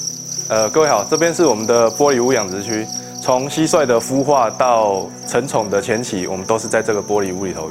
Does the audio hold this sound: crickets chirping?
yes